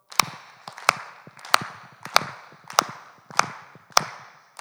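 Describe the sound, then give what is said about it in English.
A crowd claps together in unison, each person clapping once for every night attended, sharp loud claps landing at a steady, even beat about seven times, each one slightly ragged as the many hands don't quite line up. “someone clapped 9 times.”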